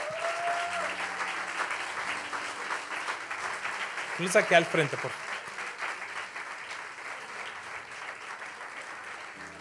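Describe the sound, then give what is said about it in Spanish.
Steady, dense applause from an audience for the young generation called up to the front runs through the whole stretch, a continuous crackle of many hands clapping, while a man speaks briefly over it partway through. “¿Por qué no le dan un aplauso a nuestras generaciones?”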